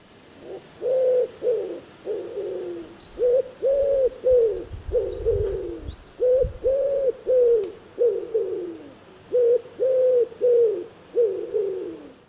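A wood pigeon coos in repeated soft, hollow phrases, each a rhythmic run of five or so low hoots with brief pauses between, clear over faint background birdsong.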